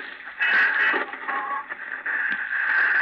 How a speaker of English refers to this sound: Arnold is trying to get something on the radio.